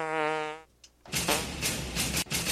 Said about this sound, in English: I like when the fart's, like, in another sample. It's randomly. Always on accident, too, for sure. These buttons are just so sensitive. Much like a real fart.